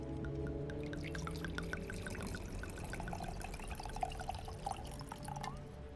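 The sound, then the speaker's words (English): Wine glugs steadily from a bottle into a glass, a continuous liquid pour with small bubbling splashes and a brief rising fill toward the end. “And thank you so much for the amazing bottle of wine. Well, it's the least we can do. We need to keep you guys in our good graces now. How kind. Please allow me to pour.”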